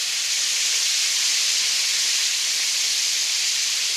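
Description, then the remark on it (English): Chicken sizzles in a deep fryer as water comes out of the chicken into the oil, a steady, loud, hissing crackle of hot oil that holds unchanged throughout with no pauses or voices. “The water from the chicken is coming out and causing that fryer to just sizzle.”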